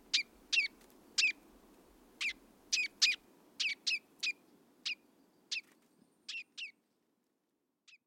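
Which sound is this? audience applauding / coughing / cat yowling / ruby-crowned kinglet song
ruby-crowned kinglet song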